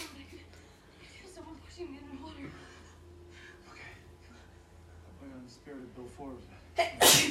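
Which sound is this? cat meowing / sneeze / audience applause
sneeze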